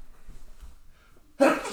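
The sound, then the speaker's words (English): Near-silence, then a single abrupt, loud sneeze bursts out, a sharp explosive rush of breath that carries on to the end. “Bless you. Thank you.”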